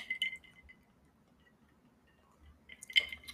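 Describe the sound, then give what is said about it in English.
Two bright clinks of glasses in a toast ring out, one at the very start and another near the end, separated by quiet faint room noise with no talking. “Let's see. Cheers. Cheers.”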